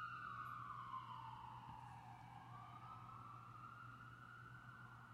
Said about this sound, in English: Fire trucks or an ambulance.